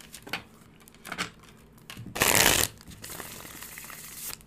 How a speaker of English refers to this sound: Love that 5-cent tarot shuffle. Shuffles like butter.